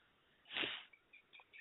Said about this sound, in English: I'm gonna sneeze again. Sorry.